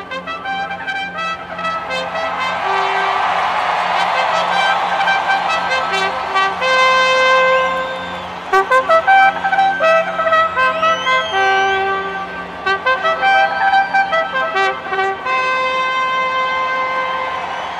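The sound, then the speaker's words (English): A bugler plays the racetrack call to post alone: bright, brassy sustained notes open the tune, followed by quick staccato bursts of repeated notes, loud and clear with no voices. “First of all, let's go back to our buddy the Bugler. Riders up!”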